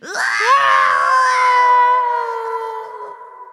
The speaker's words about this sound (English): Up and down the whole land, they fought for weeks and weeks until finally the hags ran screaming away.